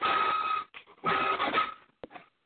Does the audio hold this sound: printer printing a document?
yes